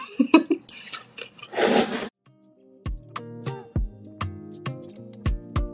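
Loud crunching from someone chewing grapes, several noisy bites over about two seconds, then plucked musical notes take over with a steady, bouncing rhythm.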